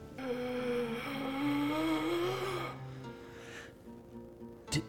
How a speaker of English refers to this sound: So you all enter into a hallway void of light. A damp mustiness surrounds you. And you hear a bellow of gasping breath in the distance.